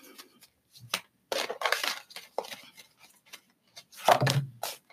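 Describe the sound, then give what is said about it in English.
A deck of message cards being shuffled live: bursts of crisp, papery riffling and flicking, a dense run in the middle, then a sharper slap of cards near the end, with no talking. “Guys, gotta shuffle live.”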